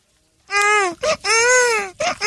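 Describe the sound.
Someone imitates a crying baby with two long, high wailing cries, each broken by short choppy sobs, loud and alone with no other talking.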